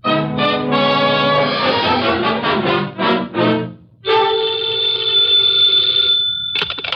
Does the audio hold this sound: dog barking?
no